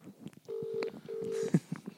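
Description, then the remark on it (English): Telephone tones from a call being placed live on air to a guest for the Buddies for Breakfast programme on Seven Sport: two steady, evenly spaced electronic beeps of equal length, moderately loud, with faint background noise and soft clatter around them. “So calling them live.”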